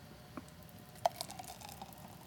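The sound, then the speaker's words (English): A thick boozy milkshake being poured from a blender's pour spout into a very large wine glass, heard as faint, soft wet plops and squishy drips over a quiet background, with no talking. “I'm going to go ahead, pour this. It's nice when your blender has the pour spout.”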